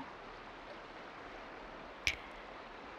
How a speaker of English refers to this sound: Feel the rain falling and just try to relax and let go.